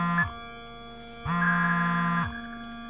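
A smartphone buzzes with a harsh, droning vibration: a brief burst cuts off at the start, then a steady buzz lasts about a second over a faint constant hum. No voices.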